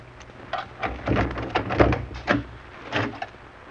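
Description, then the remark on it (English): A locked door in a cellar storage room being unlocked and opened: an uneven series of clattering clicks and knocks, with a few heavier thuds in the middle, and no voices. “We took the stairs down to one of the cellars, walked along some dark halls, and then stopped in front of a locked door.”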